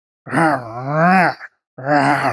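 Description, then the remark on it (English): A voice imitates the growl of a Displacer Beast monster during a game, two drawn-out, low, throaty groans, the first long and rising then falling, the second shorter after a brief pause. “It starts growling at you,”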